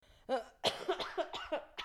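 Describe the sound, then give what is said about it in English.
A fit of coughing: one cough, a brief pause, then a rapid string of four or five harsh coughs in quick succession, with no talking. “Oh my God, I better not be fucking coughing this whole podcast.”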